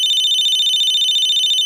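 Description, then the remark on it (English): A telephone rings during a played recording of a phone call, with a high, rapidly warbling electronic trill that holds steady and loud for the whole short stretch, with no voices over it. “Listening in to one of his phone calls?”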